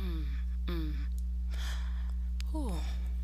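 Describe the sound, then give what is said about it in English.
Heavy breaths rush into the microphone, mixed with a few short voiced sighs or groans, all over a steady low electrical hum. “Of heavy motherfucking breathing on this damn episode.”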